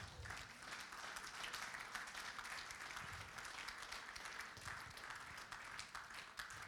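An audience claps together in steady, dense applause that holds at an even loudness for several seconds, with no voices standing out.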